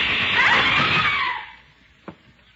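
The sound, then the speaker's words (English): A woman's loud, shrill scream fills the first second and a half, then fades, and a single sharp gunshot cracks out shortly after in the quiet; the shot hits a movie projector. “And when you hear shots, scream.”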